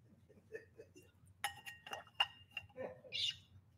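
A few bright glass clinks as someone takes a little sip during a scripture reading, sharp taps with lingering tonal resonance, followed by a softer clink and faint rustling over a low background hum.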